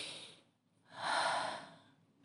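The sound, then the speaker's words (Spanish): A person takes a deep, audible breath: a brief trailing exhale, a short pause, then one long, full breath that swells and slowly fades, with no talking. “En esa respiración, dele su alma a Jesús, Señor.”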